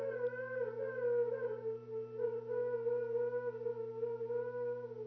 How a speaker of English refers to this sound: Is there a siren somewhere? What's he? What is that? Must be. That's Ernie. It's mimicking a siren.